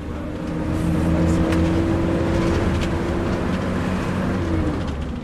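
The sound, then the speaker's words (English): A bus engine drones steadily with a low, sustained rumble and a faint whining tone above it, loud and continuous throughout, with no voices, during an 8-hour bus journey. “The bus journey is a long one, 8 hours.”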